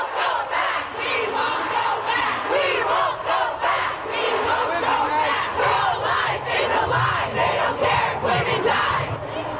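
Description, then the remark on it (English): A large crowd of women protesters, marching to Joe Biden's front gate in Washington, D.C. to demand that the federal government legalize abortion, shouts and chants together in a loud, continuous roar of many overlapping voices, rising and falling in waves without a break for the whole stretch. “And across the nation, a crowd of women who marched to Joe Biden's front gate on Saturday found themselves dismissed as out of step by the president's top spokeswoman while battling unpredictable D.C.”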